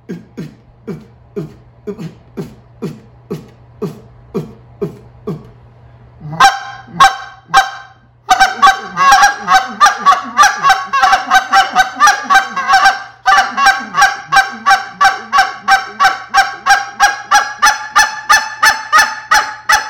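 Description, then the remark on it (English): Rapid, rhythmic speed clucks blown on a goose call, using the throat to break the call, starting as evenly spaced low pops and building into a fast, loud, continuous run of sharp honking clucks. “So that is how I'm getting to that speed cluck again.”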